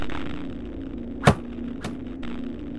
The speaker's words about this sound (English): The words had barely emanated from the simulacrum's voice box when twin arrows cut through the air. Low to the ground, long shafts overcame the holes in the barricade.